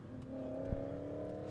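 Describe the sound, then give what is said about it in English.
A truck doing a burnout at a car show: its engine roars at steady high revs with a sustained tonal drone, loud, with a brief thump partway through; rough, hissing noise of tires spinning against pavement and leaving marks. “Tires. He can do whatever he wants. Oh, my God. But he's leaving marks.”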